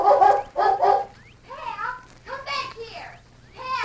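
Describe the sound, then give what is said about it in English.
A golden-brown collie with a white chest barks: two loud barks, then a run of higher, whiny yelps and yips spaced irregularly, ending with another sharp bark. “As soon as they heard the dog barking, the Lone Ranger and Tonto leaped to their feet.”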